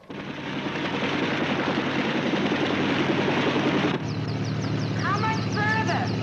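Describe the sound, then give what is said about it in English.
An Army helicopter rushing two doctors to Las Vegas drones loudly and steadily, its dense engine roar and low rotor hum continuing throughout, with some faint high chirping tones appearing over it near the end. “The Army is rushing two doctors to Las Vegas by way of helicopter.”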